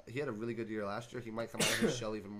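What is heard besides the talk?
sneeze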